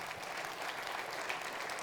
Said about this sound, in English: Yeah, go ahead and clap.